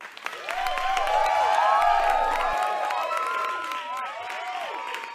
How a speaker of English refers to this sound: Please give a warm round of applause for tonight's musical guest and your loving neighbors